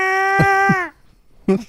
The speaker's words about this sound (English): They have a special, you know, computer that tells you which for the screams, anytime there's like a cow scream, they make the algorithm go to whatever song,